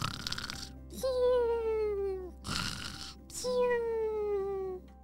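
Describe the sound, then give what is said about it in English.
Two cartoonish snores of butterflies in a jar, put fast asleep by a powder, each a breathy, hissing inhale followed by a long, high whistling tone that slowly slides downward in pitch. Playful and moderately loud, with no talking. “"Have you ever heard a butterfly snore?"”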